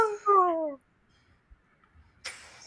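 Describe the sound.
A person imitates a pig with a short, harsh, noisy snort at the end, following a brief pause. Before that comes a falling, whiny voiced call that sounds like a meow.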